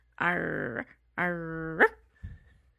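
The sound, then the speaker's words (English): A person imitates a puppy's bark, guessing how a puppy character in an anime sounds, with two drawn-out, whiny yelps, fairly loud, the second squeaking upward at its end, followed by a brief soft low grunt. “I was going to say, this is my guess for the anime.”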